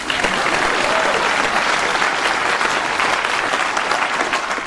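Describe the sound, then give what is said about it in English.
A crowd applauds steadily for about five seconds, a dense wash of many hands clapping at an even, fairly loud level, with no voices standing out. “Please clap.”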